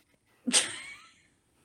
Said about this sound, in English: Sneeze. I apologize. Bless you. Going to sneeze or you did sneeze? Oh, so bless you.